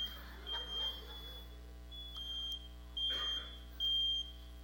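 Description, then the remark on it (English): An oven timer beeps while a dinner is being prepared, in a few short, high-pitched electronic pulses spaced unevenly over several seconds, fairly quiet against a steady low hum. “We're having a dinner, and that's the oven timer.”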